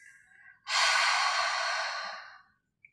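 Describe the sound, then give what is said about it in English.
A person in a breathing exercise, after inhaling through the nose, breathes out through the mouth: a long, breathy open-mouthed exhale, like fogging a mirror, rushes out loudly for about two seconds after a faint lead-in, then fades away, with no talking. “We'll inhale through the nose to fill up the lungs and exhale through the mouth, making a sound like fogging a mirror.”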